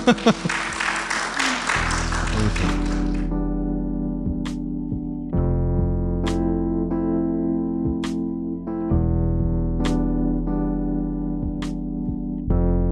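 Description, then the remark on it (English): A short burst of applause fills the opening two seconds, then fades out as steady, droning electronic tones take over, with sharp ticks recurring every couple of seconds. “Big round of applause, everybody.”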